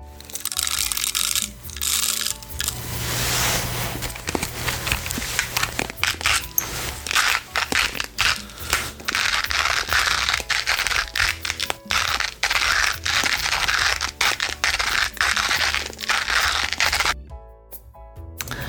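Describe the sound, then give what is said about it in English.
A little hand grinder crunches a few coffee beans in a steady, gritty rasp, with rapid cracks and crackles running nearly the whole time before a brief pause and a last burst. “So just a few coffee beans, pouring them into a little hand grinder that I have, and grinding away, and then looking for the hot water later.”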